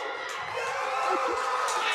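A weightlifter, the Mountain from Iceland, lets out a loud, strained, sustained scream of effort during a world-record lift beating the old record of 1,102 pounds, over the steady roar of a cheering crowd, the noise holding for about two seconds.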